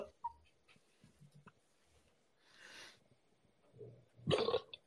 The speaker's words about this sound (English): Bless you. I'm blessing people when they burp now.